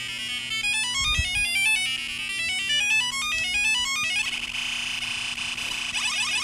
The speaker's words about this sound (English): This is the macro pad. We're still hanging out here. I'm gonna plug this in, and Todd's been playing around with PWM to make some super fun sounds.